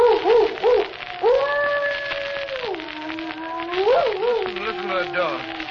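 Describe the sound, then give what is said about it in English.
Heavy rain from a night thunderstorm, the first of the season, hisses steadily throughout, while a loud, wavering howl rises and falls over it, sliding between pitches like gusting wind. “Gracious, what a night. The first thunderstorm of the season.”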